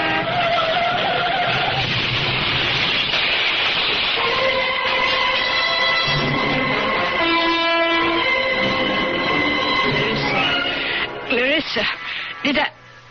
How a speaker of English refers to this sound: Was that the sound of a car crash?